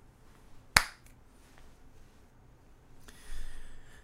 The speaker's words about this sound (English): I didn't need to do that. I clapped. I've been doing this for a lot of years. And I clap as though if I don't, the whole thing is ruined.